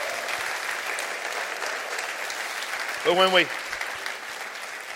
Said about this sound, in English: Clap your hands.